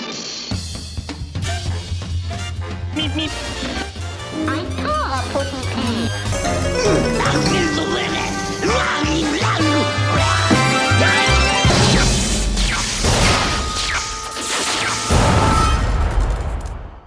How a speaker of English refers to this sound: Oh, here's the intro music.